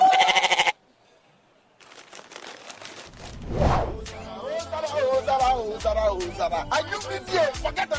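A goat lets out one loud, quavering bleat. After a brief silence, rhythmic music with a steady beat starts up and continues to the end.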